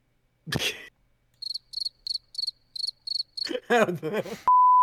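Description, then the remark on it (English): A steady run of about eight crisp, high cricket chirps pulses evenly, preceded by a sharp cough-like burst and followed by a short vocal sound and a flat electronic beep. “There wouldn't be dead space if there was crickets.”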